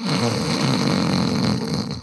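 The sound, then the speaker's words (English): A man makes a loud, sustained snoring noise live with his own voice, not a sound effect, a rough rattling drone lasting about two seconds with no pauses, imitating a snore. “And don't snore this time.”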